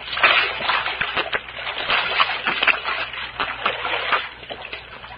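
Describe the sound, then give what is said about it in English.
Continuous splashing and sloshing of spring water in a creek, with irregular bursts as people scoop it up to drink, a steady low hum underneath and no one speaking. “Hey, how about us falling on our faces and having a drink, huh? Undoubtedly spring water.”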